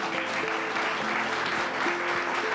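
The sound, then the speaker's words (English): Sustained audience applause thanking the evening's panelists, a dense steady wash of many hands clapping at once, fairly loud and even throughout with no voices standing out. “Can we thank our panelists tonight?”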